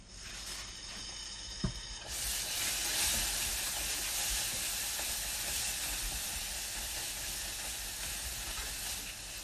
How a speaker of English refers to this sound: Hear it sizzle? It's adding the cold butter to it.